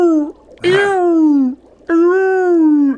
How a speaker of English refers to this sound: Oh, those are my friends, the humpback whales.